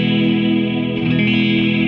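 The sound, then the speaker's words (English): A sustained electric guitar chord played through a Strymon reverb pedal set to mod reverb, washed in shimmering, modulated reverb, its wobbling chorus-like swirl holding steady and loud throughout with no voices. “Right now I have that as a mod reverb, which I quite like, but my favorite setting for it is this.”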